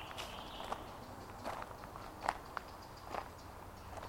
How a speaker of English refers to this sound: The only sounds now are our footsteps.